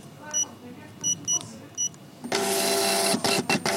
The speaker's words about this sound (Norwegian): Selvbetjent kasse, gitt. Skanne varen. Fortsett til betaling. En plastpose. Inn med kortet her.